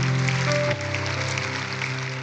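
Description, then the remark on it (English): A church audience at Woodside Bible Church claps together as a hand clap of praise to God, a dense, steady wash of applause with sustained low musical tones holding underneath. No one speaks. “Can we give him a big hand clap of praise?”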